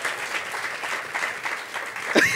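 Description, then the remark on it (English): A crowd applauds with steady, dense clapping that holds a constant level throughout, and a quick rising whistle-like tone cuts through right at the end. “I love that there's a bunch of people clapping and then there's one dude standing there and he's like, nah.”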